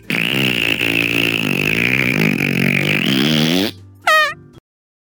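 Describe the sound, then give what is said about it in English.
A long, loud, raspy fart noise buzzes for several seconds with a wavering pitch, then cuts off and ends with a brief, squeaky high-pitched trill. “This episode of the Rocky Balboa Cheesesteak Fun Hour is brought to you by Farts.”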